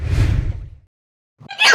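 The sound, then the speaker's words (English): A forceful sneeze bursts out and trails off, followed by a short silence before another sharp, breathy burst begins. “I'm going to end up having to end up out sneezes and hiccups.”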